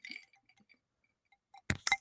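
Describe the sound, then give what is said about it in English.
Two sharp glass clinks land close together near the end, following a few faint ticks and taps, with no talking: drinking glasses touched together in a toast, one holding Southern Comfort and Diet Coke, its glass printed with the word 'hooray'. “But my glass says fucking hooray on it. So. Well, cheers, girl.”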